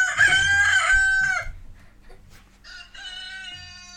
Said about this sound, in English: I think we're going to have some other random chickens in the background as well, probably.